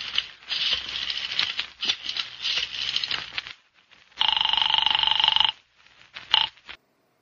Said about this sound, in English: Go ahead and dial the phone.